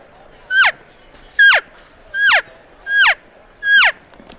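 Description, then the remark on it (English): Five short, nasal elk mews made with an elk call, a lower, deeper cow call then quick calf calls, each sliding sharply downward in pitch, repeated at a steady pace with brief silences between, loud. “So that's got the lower, you know, a little bit deeper nasally sound of a cow, and then you can just do your real quick calf.”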